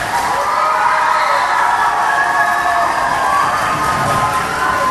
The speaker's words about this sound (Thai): เด็กๆรักนะเด็กๆช่วยเชียร์เยอะเลย